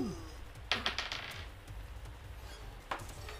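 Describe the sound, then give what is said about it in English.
Dice clatter across a hard tabletop in a quick burst of rattling clicks as players roll initiative, followed by a single sharper click a couple of seconds later, with no voices. “As Razwing rushes forward, I need scrap paper, and I also need people to roll initiative.”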